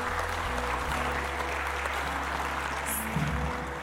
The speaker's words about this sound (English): So can we give just a round of applause for everyone who's on a team? You guys are amazing.